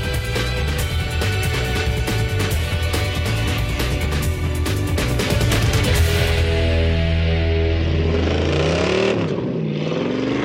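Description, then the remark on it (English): A 1993 Mustang Cobra's V8 engine idles loudly, then revs, its pitch sweeping up and falling back down in smooth swells toward the end. No voices. “This is our 93 Cobra.”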